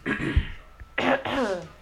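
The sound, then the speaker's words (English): A person clears their throat close to the mic, with a raspy rumble followed by two short, harsher bursts, loud and unaccompanied by speech. “Well, I don't wanna have to keep clearing my throat in the mic.”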